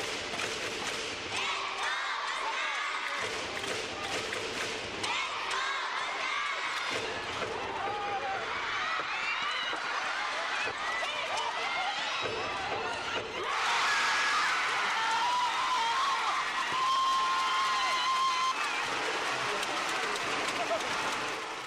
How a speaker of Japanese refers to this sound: バスケットでは安全圏とも言われる20点以上、最大23点差から最後は 0.3 秒での大大大逆転勝利に、会場は割れんばかりの歓声が起こりました。